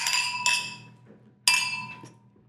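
Wine glasses clink together in a toast, several bright ringing chimes that strike and decay, with a second clear clink about a second later, fairly loud with no talking.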